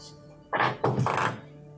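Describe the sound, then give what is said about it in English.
A die tumbling across a tabletop, a short run of hollow clattering knocks over about a second, moderately loud against a quiet background with no talking. “No, I rolled a dice, sorry. You hear the clack of a dice.”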